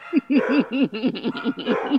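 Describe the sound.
A person mimics a dog with a quick run of high, yappy barking sounds, about a dozen short voiced bursts in rapid rhythm, fairly loud, with no other talk.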